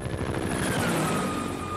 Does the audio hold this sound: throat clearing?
no